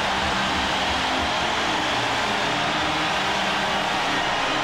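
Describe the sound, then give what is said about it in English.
A hockey arena crowd roars after Brett Hall's 86th goal of the season for the Blues in 1991, tying the game 1-1, a dense, steady wall of cheering that holds at full volume for several seconds with no voices standing out. “Listen to that crowd recognizing the moment.”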